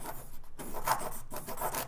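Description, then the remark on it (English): A pencil scratches across paper in a run of quick, rasping strokes, steady and fairly loud, with brief pauses between bursts and no voices. “Oh, like I can trust this pencil to write.”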